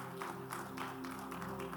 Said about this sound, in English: Give the Lord a good clap offering, somebody.